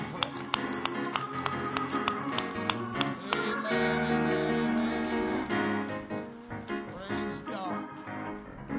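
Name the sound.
audience clapping hands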